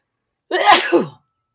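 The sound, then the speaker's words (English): A single loud sneeze bursts out after a moment of silence, with a sharp breathy onset and a brief trailing exhale, then quiet. “I'm going to sneeze.”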